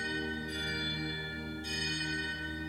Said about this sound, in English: Then she closed her eyes as the clock chimed below.